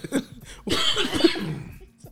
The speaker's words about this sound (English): He coughing, bro.